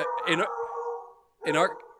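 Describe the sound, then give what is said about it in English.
A dog howls loudly in a long, wavering tone, broken by two sharper, yelping bark bursts near the start and end. “Our dog yells when one of us is in the hallway.”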